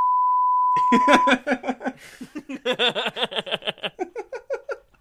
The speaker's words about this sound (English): I'm just gonna beep that out. Nobody's gonna have any idea what I just said.